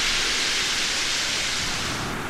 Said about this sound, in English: He's bobbed over another wave as it's breaking in, comes towards me on the edge.